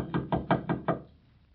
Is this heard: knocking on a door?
yes